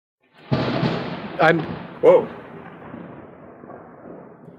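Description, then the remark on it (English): A large explosion booms in the distance, followed by two sharper bursts within the next couple of seconds, then a long, low rumble that slowly fades away. “Off into the far distance, you guys hear a large explosion.”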